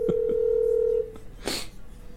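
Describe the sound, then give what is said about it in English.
Short electronic telephone keypad beeps as someone dials a call, alongside a steady tone lasting about a second, followed by a brief, noisy rustle. Fairly clear, with no talking. “I'm just going to give him a call.”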